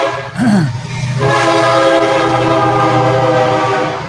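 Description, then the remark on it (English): A Burlington Northern Santa Fe (BNSF) freight train rumbles past, its horn blaring in a long, sustained chord over the steady roar of rolling cars. “There goes the Burlington Northern Santa Fe Railroad.”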